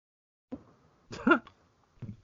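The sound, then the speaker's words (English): A cat gives one short, fairly loud meow that rises and falls in pitch, set between a couple of brief, muffled low sounds before and after it. “I hear you meowing and I don't care right now.”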